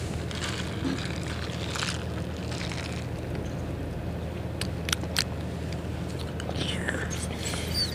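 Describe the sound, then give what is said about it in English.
Wet sipping of a Christmassy winter-spiced drink and mouth noises right at the microphone, with a few sharp smacking clicks near the middle, over a steady low rumble and no talking. “Drinking sounds in the microphone are nice.”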